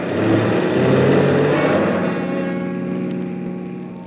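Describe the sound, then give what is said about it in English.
A car engine hums steadily, its tone shifting slightly as the car pulls back onto the road after a detour stop and accelerates, with a low rumble of tires on the road underneath. “After I got the car back onto the road again, I felt like a fool.”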